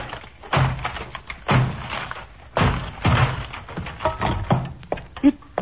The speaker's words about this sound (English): We'll have to break down the door.